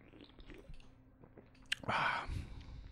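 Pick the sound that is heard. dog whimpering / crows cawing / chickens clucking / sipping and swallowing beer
sipping and swallowing beer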